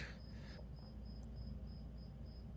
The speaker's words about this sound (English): Shut up, cricket. That has to be outside. I hit the window when it stopped. Still a bit of a grasshopper cricket infestation here in Las Vegas.